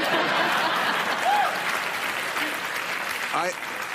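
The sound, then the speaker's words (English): A crowd applauding steadily, dense clapping at a constant loudness for several seconds, with a few faint cheers or whoops rising briefly above it. “Now we've hit a nerve with the crowd.”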